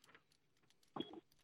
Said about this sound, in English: Oh geez, you've got a weak horn. That went well.